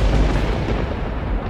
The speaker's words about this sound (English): I vanish from where I am. I appear next to my goat and in the space where I was, an explosion of lightning and thunder goes off.